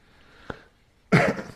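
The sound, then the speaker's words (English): A single harsh cough bursts out after a faint click and a moment of near silence, loud and brief, with no talking around it. “A cough in your mouth.”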